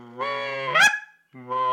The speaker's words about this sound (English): That's a goose.